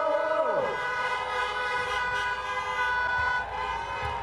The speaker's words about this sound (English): And can you hear? Oh, the honking. Honk, honk.